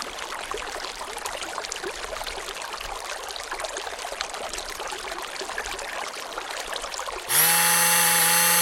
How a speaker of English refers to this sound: Listeners, the City Council, for national security reasons, have replaced the following report with the sound of a burbling brook, followed by the sound of a running blender.